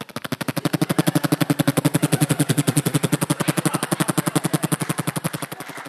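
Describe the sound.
Rhys Darby imitates machine gun fire with his voice, a loud, unbroken stream of rapid, evenly spaced staccato bursts, roughly ten per second, holding steady for several seconds with no other talking.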